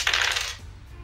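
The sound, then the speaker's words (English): Five dice clatter across a hard surface in a quick, bright burst of rattling, fading after about half a second, with no voices. “Yeah, give me that roll. I think it's five dice.”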